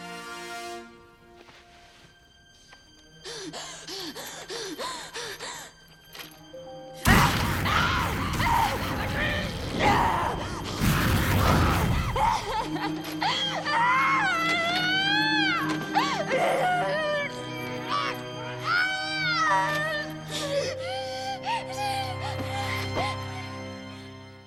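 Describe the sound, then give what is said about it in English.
A woman screams and wails in long, wavering cries, loud, broken by heaving breaths, following a roaring rush of noise earlier on; voice acting of a character chained to a grate and breathing fire. “Just her screaming and crying and heaving, just breathing fire, chained to that grate, just like, because she knows that she's lost and that's it.”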